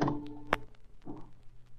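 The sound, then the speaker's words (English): The door to the main salon opening: one sharp latch click, then a brief, softer scrape as it swings, over a low steady hum with no talking. “I opened the door.”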